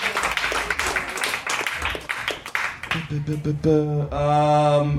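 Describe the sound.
A crowd claps and applauds steadily for a few seconds, a dense wash of hand claps, before a single voice starts speaking loudly over the fading applause.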